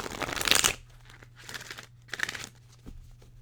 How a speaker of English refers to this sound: So here we go. I really like to shuffle my cards three times, as I told you in the last month's episode.